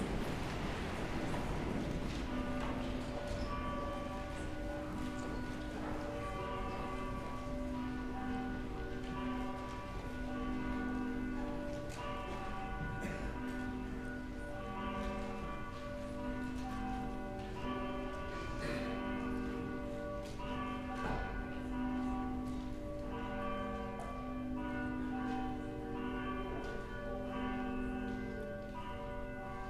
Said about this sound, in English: Please stand. The bells will call us to worship.